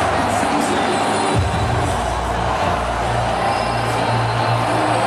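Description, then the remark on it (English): A large stadium crowd at a Chargers game roars steadily for about five seconds as a hype video plays with two minutes left, a dense wash of cheering and shouting with a low hum of 'Let's Go Chargers' chanting underneath. “You can tell the crowd is also getting hyped. There was some Let's Go Chargers chanting happening.”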